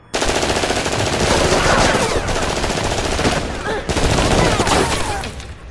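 In a movie scene, loud, sustained automatic rifle fire from an AK-47 rattles in rapid, nearly unbroken bursts, with a brief pause partway through and faint shouting mixed under the din.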